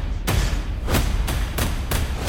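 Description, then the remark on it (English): Heavy punches land on a heavy bag in a boxing gym, about five loud, deep thuds in a loose, uneven rhythm over a steady background hum, with no talking. “Sounds like someone's hitting a sledgehammer. A lot of boxing, a lot of hitting heavy bags.”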